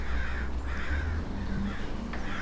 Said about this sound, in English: The nearby screeching of the crows startled her, like a sudden siren on the streets of a city. She turned and saw the band of haunting figures not 10 yards away on a stunted mountain pine. They ruffled their feathers and flapped their wings